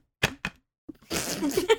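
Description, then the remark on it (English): Two quick, sharp slaps of the top of a Halloween Borden's chocolate milk carton being slammed down just after it is opened, fairly loud, a beat apart, followed by a burst of voice and rustling. “Emily really just opened the chocolate milk and slammed the top onto it twice”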